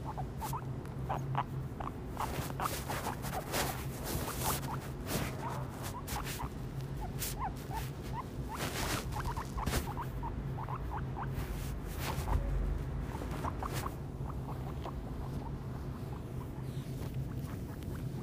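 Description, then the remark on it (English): A guinea pig squeaks again and again in short, high-pitched bursts, some chirping quickly in clusters, over a steady low hum and faint rustling, with no one speaking. “That's our guinea pig squeaking.”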